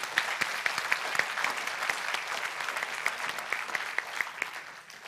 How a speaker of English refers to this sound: Come on, I think we need to give God another round of applause.